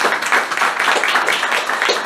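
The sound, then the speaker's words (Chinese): A crowd at an Amway talk breaks into steady applause for the leaders present, many hands clapping at once in a dense, continuous patter that stays loud and even throughout, with no talking over it. “请给他们一个很大的掌声。”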